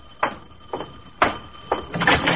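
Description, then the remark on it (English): A door being opened: a few short, evenly spaced clunks and rattles, then a longer scraping rush of sound as it swings, with no voices. “I open the door, and then right into a story.”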